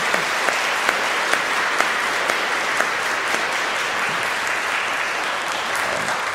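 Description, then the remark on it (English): Sustained applause from an audience, including young Tibetans, for His Excellency: a steady wash of many hands clapping with a few sharper individual claps standing out, continuing evenly throughout with no voices. “But we give His Excellency a round of applause.”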